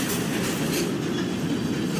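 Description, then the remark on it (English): A train rumbles steadily along the rails, a continuous loud roar with a faint rhythmic clatter of wheels, sustained without pause, with no voices. “Get your ass away from the train, I'm gonna kill you!”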